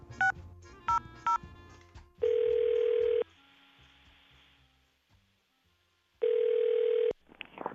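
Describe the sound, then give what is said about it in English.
Three quick touch-tone key beeps are dialed to phone a boss, followed by a steady electronic phone-line tone that sounds for about a second, falls silent for a few seconds, then sounds again. “Okay, I'm going to get my boss on the phone.”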